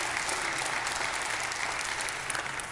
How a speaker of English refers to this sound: And guys, thank y'all for that worship. Y'all, let's give them a hand clap. Yeah, that was awesome, thank you.